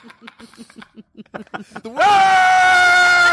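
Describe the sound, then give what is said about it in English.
A quick series of short, breathy laugh-like bursts breaks into a sudden, loud, sustained high-pitched scream that holds steady at full volume until the end. “Word of the day, scream real loud.”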